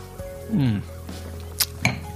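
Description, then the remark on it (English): A glass of red wine gives two quick, light clinks as it is picked up, the second just after the first, following a brief low humming sound over a quiet background. “I've got a nice glass of red wine here. It's sat untouched.”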